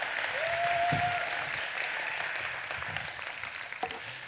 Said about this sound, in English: Is there anything too hard for your Lord? That's an applause line right there, so go right ahead while I...